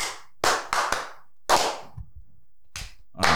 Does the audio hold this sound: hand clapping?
yes